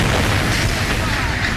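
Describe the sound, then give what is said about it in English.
A loud, deep explosion boom, equivalent to around 500 kilotons of TNT and originating almost 20 miles above, rolls on as a sustained low roar for the whole moment, dense and rumbling, with no clear pause or separate blasts. “Without warning, an explosion equivalent to around 500 kilotons of TNT originated from almost 20 miles above.”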